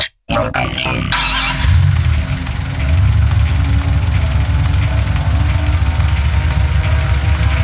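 A motorbike engine idles with a steady, loud, low rumble and a gritty buzz, continuous, following a brief cut at the very start.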